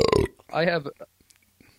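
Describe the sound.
A single short, throaty burp rumbles out loudly and close up, bracketed by brief bits of speech at the start and end.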